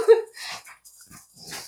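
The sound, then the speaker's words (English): Dogs scuffle: a sharp, high whimpering yelp opens the moment, then rough, breathy snarls and scrambling noises follow in short bursts. “We have a whole dog fighting section part of this podcast.”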